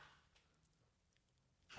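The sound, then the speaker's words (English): A near-silent stretch ends in one sharp, loud clack as a child safety gate swings shut, a single impact with nobody talking. “My wife just closed the child gate.”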